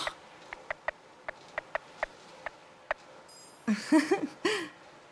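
Sparse raindrops tap in a steady, uneven patter of sharp single clicks, fairly quiet, then a brief high tone and some voiced, murmuring sounds take over near the end.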